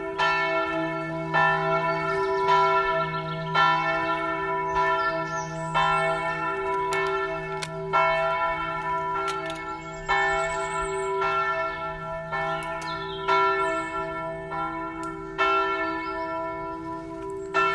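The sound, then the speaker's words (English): The church bells of the La Verna monastery ring continuously in a steady overlapping peal, with repeated strikes layering rich sustained tones and a low hum beneath, fairly loud and resonant with no voices. “You're hearing the bells of La Verna, the monastery where St. Francis received stigmata.”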